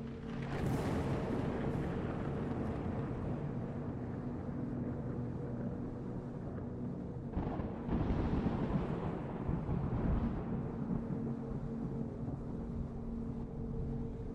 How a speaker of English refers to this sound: You can hear the rumble of the storm up above, lightning coursing through the dark clouds. As the blizzard continues to swirl overhead, this persistent thunder snow.